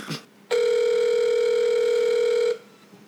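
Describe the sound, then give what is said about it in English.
A phone rings with an incoming call: one steady electronic ring tone lasting about two seconds, loud, with a brief faint noise just before it and quiet afterward. “She's gonna call him back. You're gonna get the phone call.”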